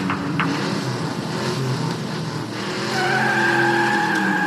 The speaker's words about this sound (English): We see footage of a car driving backwards through the glass doors of some Fancy Pants diamond store. Then another car is behind it.